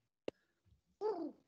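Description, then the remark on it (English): A sharp click, then a short pause before a strained, warbling vocal coo as a person imitates a constipated pigeon, fairly loud, lasting under half a second. “constipated pigeon.”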